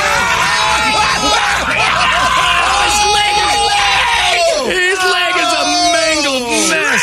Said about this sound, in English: The screaming is justified. That is justified. Somebody back the bus up just a little. They can't move it. Why? Because the front axle's broken. Yeah, that is a reasonable scream.